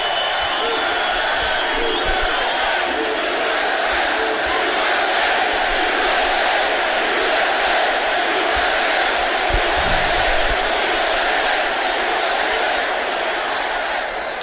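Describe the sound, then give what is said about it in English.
A large rally crowd roars continuously, cheering to vote for the slogan "Keep America Great", with shouting and whoops blending into a dense, loud wall of sound that holds steady for the whole stretch. “I thought you had it won, and then I heard this cheer. My eardrums will never be the same.”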